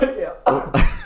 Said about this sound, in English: Choked on your water.